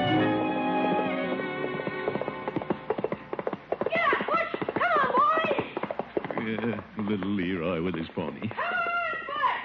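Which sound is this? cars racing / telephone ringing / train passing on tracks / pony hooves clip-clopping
pony hooves clip-clopping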